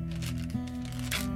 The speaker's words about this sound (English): There were several pills on the ground. I put them back in their case.